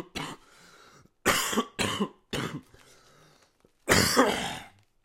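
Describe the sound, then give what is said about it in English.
A person coughs and clears their throat in several harsh bursts, with a short lull before a final, louder round of coughing. “I felt fine until we started recording this. I wasn't even coughing.”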